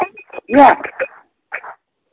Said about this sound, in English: your phone's a little bit distorted. Can you reset? Is that better?